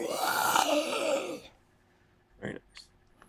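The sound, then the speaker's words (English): A voice imitates a monster's howl: one loud, raspy, wavering cry lasting about a second and a half, then it cuts off, followed by silence and a short, breathy exhale. “Okay, so you play Danny Boy, and the monsters, you hear a howl.”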